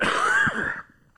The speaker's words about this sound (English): Sorry, I covered the microphone and I coughed all over you.